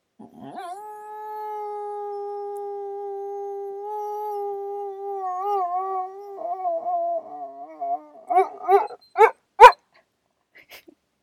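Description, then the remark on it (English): A single dog howls in its sleep: a long, steady, drawn-out howl that starts to waver, then breaks into a few short, sharp yips before going quiet, with no voices. “He was just napping, and then sometimes he howls in his sleep, and he's fine, everybody.”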